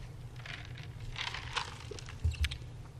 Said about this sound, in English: which I'm chewing on ice.